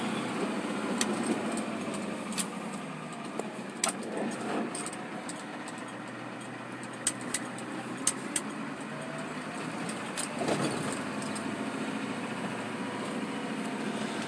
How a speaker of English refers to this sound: And I'm driving the company work truck. As if you can't hear it,